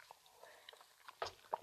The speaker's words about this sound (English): I'm going to take a quick sip of water, and hopefully it doesn't take too long. Glug, glug, glug, glug, glug.